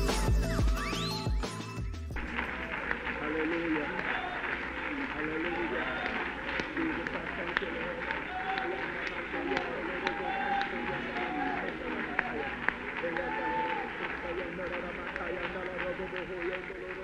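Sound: audience clapping hands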